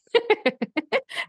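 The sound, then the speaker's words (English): A dog makes a rapid run of about seven short, pitched yelps or whimpers, fairly loud, the last one breathier and more drawn out. “my dog just made a noise.”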